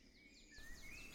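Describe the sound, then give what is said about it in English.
Faint birds chirping and calling, a quick series of repeated descending chirps over a thin, rising whistle, with no one talking. “And I swear there's at least two of them calling me a geezer.”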